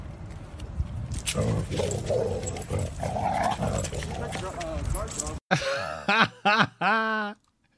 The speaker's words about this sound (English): Let's go. We gotta rewind it just for the dog. Get him.